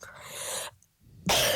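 sneeze

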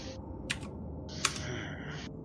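dice being rolled

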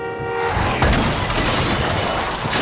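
car crash

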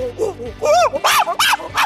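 monkey sound effect

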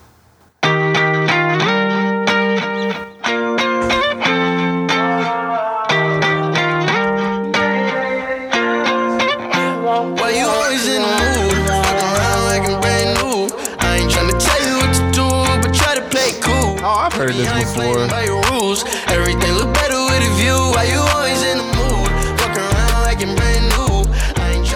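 pop song playing

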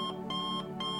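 alarm clock ringing

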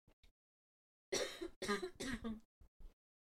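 coughing and throat clearing

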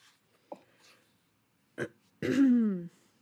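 throat clearing

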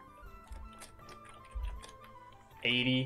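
timer ticking

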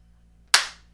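single loud hand clap

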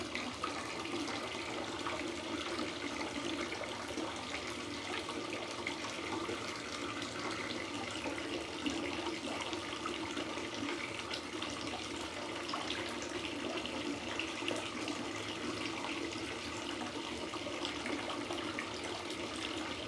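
hot water running

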